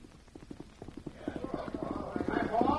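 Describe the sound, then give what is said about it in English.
Steady hoofbeats of a man riding a horse up to a hitch rack on a town street clip-clop at a walking pace, growing louder over a few seconds before he dismounts, with a faint murmur of voices rising underneath toward the end. “Man and horse ride up, dismount.”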